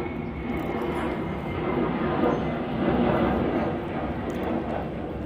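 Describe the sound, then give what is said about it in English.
A steady, broad engine roar from an airplane overhead, swelling slightly in the middle and holding loud throughout, with no speech over it. “Hold on, let me let the airplane pass.”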